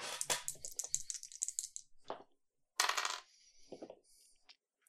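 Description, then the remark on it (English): Metal objects are set down on the ground by someone directly outside a door, with a burst of rattling clinks, a sharp clank, then a louder jangling clatter and a few softer knocks. No one speaks. “You do hear him fiddling with something on the other side of the door. Directly placing some metal on the ground.”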